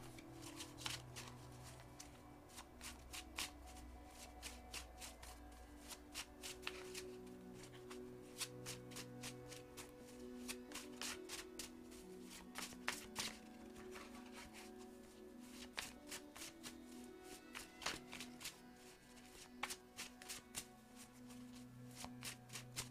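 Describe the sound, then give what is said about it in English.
Tarot cards being shuffled continuously for over twenty seconds, a steady run of crisp riffling and snapping flicks over a soft low background hum, with no talking. “Let's do some shuffling first.”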